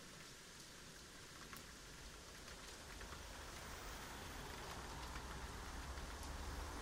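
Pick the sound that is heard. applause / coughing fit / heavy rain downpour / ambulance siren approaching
heavy rain downpour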